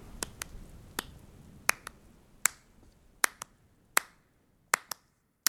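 human body sound, clapping along

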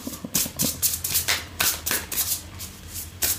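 household object, shuffling cards

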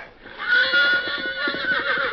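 animal, horse neighing

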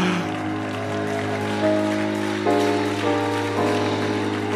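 crowd, audience clapping

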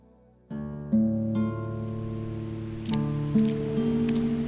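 nature, rain falling

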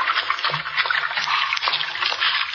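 nature, running water

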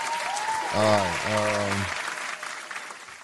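crowd, applause sound effect

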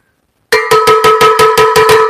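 signal or alarm, cowbell being rung

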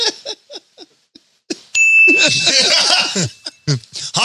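sound effect, bell ding

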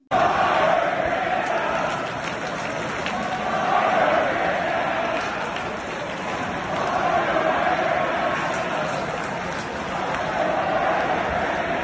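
crowd, hockey arena crowd chanting

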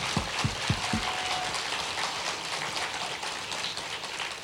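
crowd, audience applause

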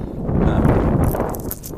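nature, wind blowing into microphone

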